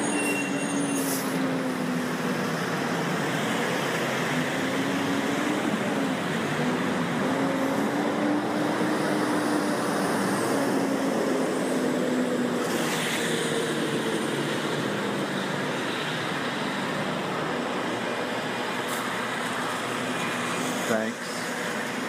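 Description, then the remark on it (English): A heavy truck full of chickens, on its way to a processing plant, rumbles loudly and steadily, its low engine drone wavering slightly in pitch over a broad wash of road noise that barely fades across the whole stretch. “A truck full of chickens drives by on its way to the processing plant.”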